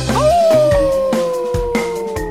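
A single long coyote howl rises briefly, then slowly glides downward as it holds, loud, with steady rhythmic thumps pulsing underneath.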